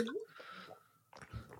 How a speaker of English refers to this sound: Sorry, I had to take a swig of water.